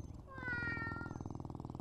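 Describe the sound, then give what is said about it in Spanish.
A cat named Draco, behind a window, lets out one drawn-out, slightly falling meow over a steady, rumbling purr, and the rhythmic purring carries on alone after the meow fades. “Buenos días, gatito. ¿Has dormido bien?”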